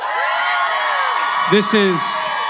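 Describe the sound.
An audience in a room at a live event cheers and whoops loudly for the hosts in a dense wash of voices, with a couple of sharp, rising whoops cutting through near the end.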